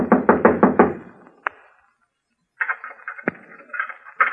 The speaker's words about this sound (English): Someone knocked. Yeah. How did anyone know we was here?